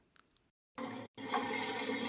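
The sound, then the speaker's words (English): An alligator bellows in two loud bursts: a brief rumbling growl, a short pause, then a longer, deep, raspy roar that holds steady until the end. No one speaks. “What was our first one? Alligator?”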